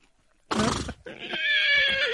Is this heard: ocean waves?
no